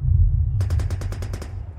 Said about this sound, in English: Around me, explosions crackle like fireworks on New Year's Eve as men fall left and right under heavy fire.